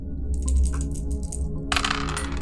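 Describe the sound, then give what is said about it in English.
Three dice clatter and tumble across a hard tabletop in two bursts of quick rattling clicks, fairly crisp, with a low steady hum underneath and no talking; they land on two ones and a six. “So I have 3 dice.”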